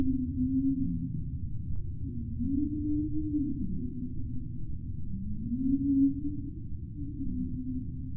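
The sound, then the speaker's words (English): Low, drawn-out whale calls moan and sweep through the water in several rising and falling tones, one after another over a steady rumbling underwater background, with no voices. “But they don't just stick their heads in the water and listen out for a passing whale.”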